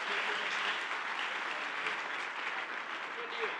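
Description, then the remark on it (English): An audience applauds prize winners called up to the front, in a steady, dense wash of clapping that holds at an even level for a few seconds, with no voices standing out above it. “Let's give a round of applause for our guys up here.”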